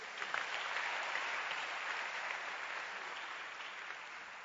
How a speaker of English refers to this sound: Clap your hands already.